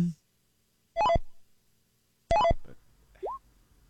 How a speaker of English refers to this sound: It's a toy, right? Like a Polly Pocket kind of a thing or something? It's a Japanese virtual pet game. Oh, no. Tamagotchi.